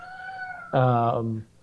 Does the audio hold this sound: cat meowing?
yes